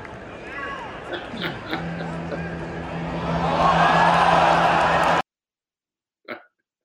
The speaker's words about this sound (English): And the reaction from the crowd is just absolutely awesome because they see it go down and they see the Brown Town go down. And so everybody goes crazy on it. And just to kind of fill you in on the story, it was at the Louisville, Virginia Tech game.